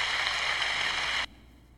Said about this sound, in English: And they're clapping.